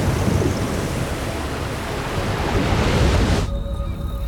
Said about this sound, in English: As Moses looked, the waves turned a deep, dark, crimson red.